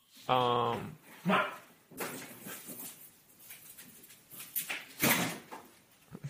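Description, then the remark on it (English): A dog lets out a loud bark and a shorter second yelp, followed by scuffling sounds of its paws as it runs across a floor, with muffled voices underneath. “The dog, I believe, is running across the floor as we listen in here.”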